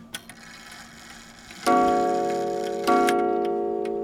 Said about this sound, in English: He just struck 2 o'clock. His repair shop, Wind Me Up Clock Shop in Rhinelander, is full of stories, memories, and, of course, clocks. The tick and the talk that you're listening to, that is what they call the beat.